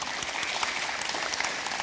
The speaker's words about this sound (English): Awesome, amen. Now, if you have not seen, you can clap for that, it's awesome.